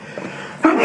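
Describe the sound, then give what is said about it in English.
A single sudden, sharp sneeze bursts out after a moment of quiet room tone, loud and breathy, cutting off abruptly. “Bless you, my boy.”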